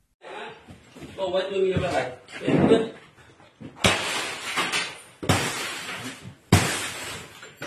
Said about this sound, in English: That's footage of fighters from the Lion Battalion supposedly smashing up a small casino outside of Shwe Koko in April.